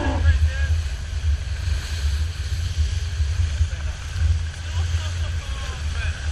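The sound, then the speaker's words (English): A boat engine drones low and steady, wrapped in continuous wind buffeting and rushing water as the hull moves through waves, with faint muffled voices underneath. “The boat was absolutely bound up. And catching waves, just, oh.”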